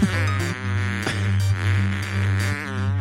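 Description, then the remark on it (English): A long, buzzy fart rasps out through a tinny phone speaker, holding a steady low pitch with gritty overtones and small wobbles for about three seconds, with no talking over it. “We need to hear these farts.”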